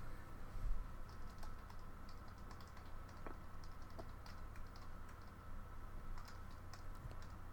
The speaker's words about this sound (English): So different without your mechanical keyboard. Yeah. Because you're like, oh, are you typing or are you just gone?